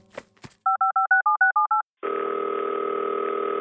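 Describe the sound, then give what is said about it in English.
A couple of handset clicks, then eight quick, evenly spaced touch-tone beeps at varied pitches, followed by a loud, steady telephone tone that hums on unbroken to the end. No one speaks. “I'm going to go give him a call and get his ETA.”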